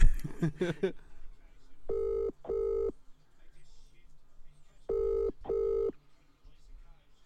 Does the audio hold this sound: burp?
no